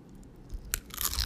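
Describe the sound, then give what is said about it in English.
Crunching of nachos being bitten and chewed, a sharp crisp snap followed by a burst of louder, brittle crunches with no talking. “Do you think if I eat my nachos, you'll be able to hear the crunching?”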